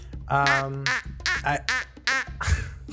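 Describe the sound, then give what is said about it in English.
A person imitates a duck with a rapid series of nasal, buzzy quacks, fairly loud, several bursts in a choppy rhythm with no actual duck present. “Do you guys want to hear my duck sounds?”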